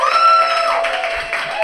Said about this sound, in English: All right, audience, real quick. I'm going to point to them. You give me the applause. Tell me who you love.